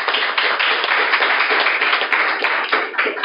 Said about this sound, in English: we're here tonight in Salt Lake City with another fabulous studio audience. This is your sign to clap.